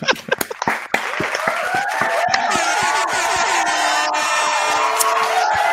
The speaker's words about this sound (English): You trip him, let's clap it up for him one time.